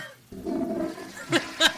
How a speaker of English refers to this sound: Sorry, I had to flush it there.